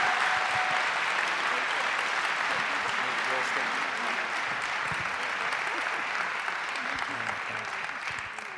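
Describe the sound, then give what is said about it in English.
Sustained audience applause for everybody at a church, a dense, steady wash of clapping hands that holds at an even loudness for the whole stretch, tapering slightly at the very end. “Okay, one more round of applause for everybody.”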